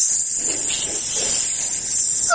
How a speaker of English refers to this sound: Sausage! Sizzling sausage. Ooh, it's sizzling hot.